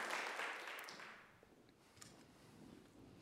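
A crowd at Desert Springs Church claps their hands together in a dense burst of applause that gradually dies away, leaving a soft murmur and a few scattered sounds afterward.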